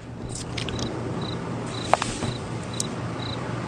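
Short, high-pitched cricket chirps repeat at intervals over a steady low hum, with a sharp click partway through; no one speaks.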